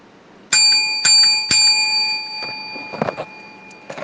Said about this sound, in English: Now, I'm going to flow as He gives me the songs. First, we're going to ring the bell.